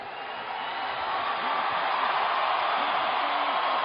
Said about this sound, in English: You didn't get the win tonight, but as you can hear from the crowd, as usual, Miguel Cotto fans go home happy. They witnessed a great fight.